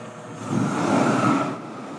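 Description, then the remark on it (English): A chili roaster, loaded with chilies under an outdoor awning, runs with a steady mechanical roar that swells louder for about a second, then settles back to a lower rumble. No one speaks. “To demonstrate, he pours the chilies into the roaster.”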